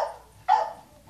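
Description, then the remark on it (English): Dogs barking in short, sharp bursts: a softer yap, then a loud bark, with another starting right at the end. No one speaks. “Dogs realize I'm here.”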